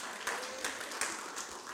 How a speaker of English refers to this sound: Thank you for the clap. I appreciate that one person.